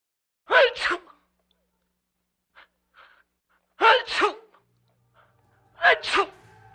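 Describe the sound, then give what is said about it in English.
Three loud, sharp sneezes ring out one after another, spaced a couple of seconds apart, with faint sniffs and breaths in the quiet gaps between them. “Ferdinand Hoyton was born sneezing. As a child, he sneezed.”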